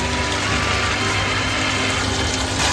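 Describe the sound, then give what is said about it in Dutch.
About 100 ml of water pours steadily into a cooking pot holding leek and bell pepper, a continuous splashing gush with a slight hollow resonance, lasting a few seconds with no voices. “100 ml water.”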